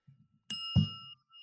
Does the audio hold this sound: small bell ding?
yes